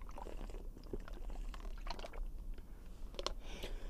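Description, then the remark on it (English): Wet mouth sounds of someone sipping water: soft slurps, small liquid clicks and a swallow over about four seconds, with no talking. “What is important, however, is I gotta take a sip of water.”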